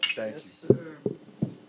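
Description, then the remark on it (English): Glasses clink together in a toast three times in quick succession, each a sharp, bright tap with a short ring, after a brief murmur of voice at the start. “Hey, man, cheers to those guys.”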